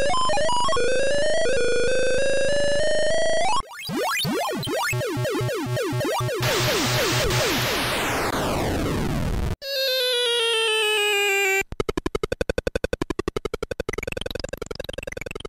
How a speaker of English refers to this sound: And then we'll get a kind of contemporary computer game that has beeps and boops and stuff. In other words, something that sounded more like this.